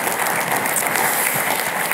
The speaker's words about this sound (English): You can clap now. That works. Thank you guys very much.